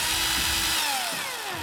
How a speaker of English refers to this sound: Drill! Drill!